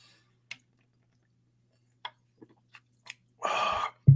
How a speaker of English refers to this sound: Hang on, let me take another sip of this horrible drink.